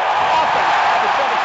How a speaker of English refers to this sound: So this is that crowd noise that we've been hearing about. I like it. I do too. I like it.